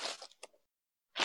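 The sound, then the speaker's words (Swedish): Paper being crumpled in a few crackly bursts, a busy rustle that fades into silence before a final short crunch. Fairly quiet, with no talking. “Nu skrynklar jag ett papper här, förlåt.”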